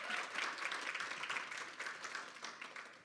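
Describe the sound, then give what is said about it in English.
Steady applause from an audience welcoming three women who will share their stories, a dense wash of many hands clapping at once, fairly quiet and continuous for the whole few seconds with no voices standing out. “Would you give them a quick welcome and cheer them on?”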